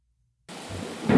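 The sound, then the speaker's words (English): After a brief silence, a thunder sound effect crashes in as a dense, hissing rumble that holds steady and then swells louder toward the end, with no one speaking. “The special effects are mind-blowing.”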